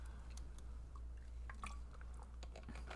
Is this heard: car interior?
no